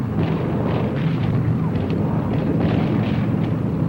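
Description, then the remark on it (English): A dense, rumbling barrage of anti-aircraft flak explosions around aircraft squadrons with fighters coming through, repeated dull bursts popping out of a constant low roar and no voices heard. “Fighters, flak, and smoke punts.”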